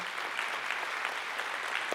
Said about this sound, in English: Come on, let's give them a big hand clap. Yeah.